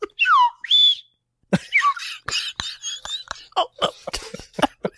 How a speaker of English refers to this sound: He's like, hold on, I'm not ready. Where's my slide whistle?